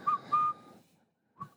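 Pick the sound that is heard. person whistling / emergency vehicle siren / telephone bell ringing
person whistling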